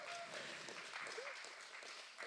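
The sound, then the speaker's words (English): An audience bursts into steady applause, dense clapping mixed with scattered cheers and a brief whoop, holding at an even level throughout, cheering a speaker's news that his first biological child is due in a couple of weeks. “You can cheer for that.”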